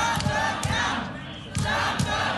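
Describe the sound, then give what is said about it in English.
A large crowd of Donald Trump's supporters in downtown Detroit in November, as workers certify the city's presidential vote, shouts and chants together in loud, dense waves. Rhythmic bursts of voices rise and fall every half second or so, with no single voice standing out. “In November, crowds of Donald Trump's supporters flocked downtown as workers certified the city's presidential vote.”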